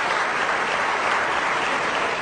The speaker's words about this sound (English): And I'm glad that you applaud, because it's a very great problem for those who oppose this motion, isn't it?